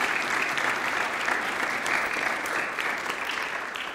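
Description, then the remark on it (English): An audience claps steadily for His Eminence Martuma Iramia for about four seconds, a dense, loud wash of many hands with occasional sharper claps standing out, fading slightly toward the end. “A big hand of applause for His Eminence.”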